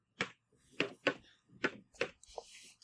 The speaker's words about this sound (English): I only heard 2 clicks of the keyboard, so. Hang on a sec. I counted 5.